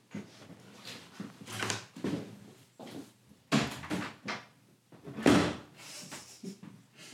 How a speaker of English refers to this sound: You shut that door.